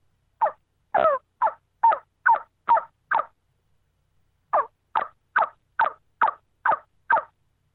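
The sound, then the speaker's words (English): Hen turkey yelps made on a call: a steady run of about seven sharp, raspy notes, a short pause, then another even series of about eight, fairly loud, with no talking. “You want that hen yelp.”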